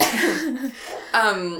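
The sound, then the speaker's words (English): A person coughs, a harsh, breathy burst that trails off in a rough, voiced tail, followed by a second strong cough after a short pause. “I'm going to cough.”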